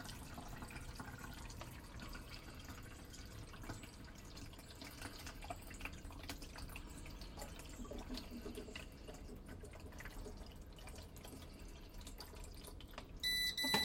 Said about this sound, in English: I use a water filter pitcher for our water so that the coffee tastes really good. No chlorine taste or anything like that. And I'll pour it in, and I'll hear a beep when the coffee water reservoir is full. So let's see how we do here.